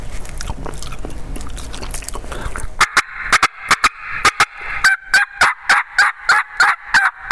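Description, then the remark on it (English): A demonstration of a turkey hen's clucking and purring, likely made on a game call: sharp, evenly spaced clucks, then rolling purrs repeating in a steady rhythm, fairly loud after a quiet, rustling start. “he's strutting, he's showing off for the ladies, and then you start clucking and purring.”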